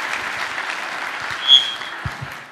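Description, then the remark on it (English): A church audience applauds steadily on a Sunday morning for the state youth director, a dense, even wash of many hands clapping for the whole clip, with a brief high whistle-like tone rising out of it midway. “Let's give it up for”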